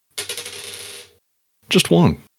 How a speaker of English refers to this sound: Oh, plus my 19. That is a 29. I'm going to roll a die.